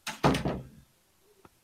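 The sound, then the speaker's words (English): A closet door swings shut with a solid thump and a brief rattle, followed by a couple of faint small clicks as it settles. “Like just the way that you could hear the door close.”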